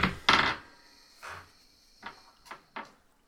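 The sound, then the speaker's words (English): An elbow and shoulder slam into a wooden door in an attempt to smash it down: two loud, heavy thuds at the start, then a few softer, scattered knocks and woody splintering cracks that fade out. No one speaks. “Okay, again, you bring your elbow and shoulder against the door, hearing it splinter and crack a little bit, but it still, you know, stands.”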